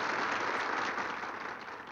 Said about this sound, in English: And he hasn't fully seen everyone, but he sees some people dressed and they're standing and applauding him, honoring him.